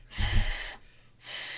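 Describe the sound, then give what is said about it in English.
A voice imitates heavy, labored breathing through a Darth Vader costume mask with two little nose holes and a mouth slit: a loud, hissing inhale followed by a pause, then another raspy breath starting, with no talking. “like, your breathing was just so fucked.”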